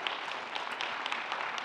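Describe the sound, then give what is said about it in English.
A church audience applauds for the Lord Jesus Christ, many hands clapping in a dense, steady patter that holds an even loudness throughout, with no voices rising above it. “Let's give applause for our Lord Jesus Christ.”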